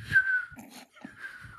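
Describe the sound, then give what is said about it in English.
Someone whistles a steady, thin tone that breaks off briefly and then resumes, held fairly level at moderate loudness, with some low murmuring noise underneath. “He's gonna whistle.”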